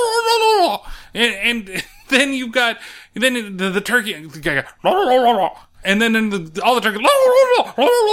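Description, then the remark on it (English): A voice imitates turkey gobbling on a turkey farm in a series of warbling, trilled bursts with wavering pitch. The calls are loud and rapid, separated by short gaps, with no other speech. “A minute of somebody making a turkey noise, and then all the turkeys making the noises.”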